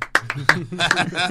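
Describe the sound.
Two people clap a few times, sharp irregular hand claps for about half a second, before a voice takes over with talk or a drawn-out vocal sound.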